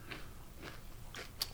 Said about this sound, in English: And don't chew in the mic